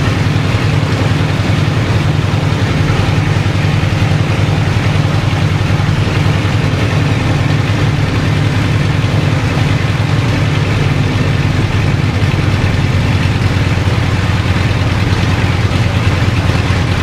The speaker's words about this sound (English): what we can see now is 1200 RPM. Yep. Lovely smooth idle.